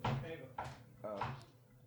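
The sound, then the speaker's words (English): Three hollow knocks on a door by a visiting friend, roughly half a second apart, moderately loud with a short resonant ring after each, and a faint murmur of voices underneath. “That's her friend knocking.”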